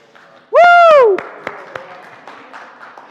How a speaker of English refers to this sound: Not to make things awkward for you leaving or anything, but let's give him applause. Woo!